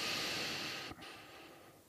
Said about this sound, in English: And we breathe in, three. And four in.